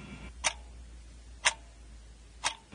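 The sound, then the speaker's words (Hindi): A clock ticks steadily, three crisp clicks spaced exactly one second apart, clear against a quiet low hum, with no voices present. “उधर घड़ी में 8 बज चुके होते हैं।”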